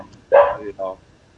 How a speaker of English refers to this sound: You can't hear me because Bob's dog is barking.